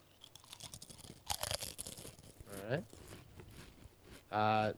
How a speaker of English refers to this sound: So I've got my Pringle. Now, the good thing with the Pringle for the radio, one, it's great because it's a visual chip, but it sounds good. It's got a good crunch.